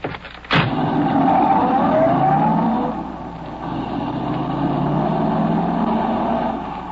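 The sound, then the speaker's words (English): A getaway car's engine revs up and accelerates after a payroll robbery. Its pitch rises steadily over several seconds before settling into a sustained, loud, continuous drone as the vehicle pulls away. “Is that the car there? Yeah. Everything okay? Yeah, get going.”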